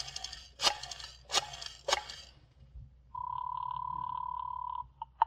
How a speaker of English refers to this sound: So, again, just for the fun of it, and without looking at the phone, I dialed 7 times.